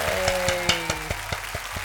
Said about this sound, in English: Okay, that's the clapping in the microphone. Wow, in post-production, I'm going to add some clapping.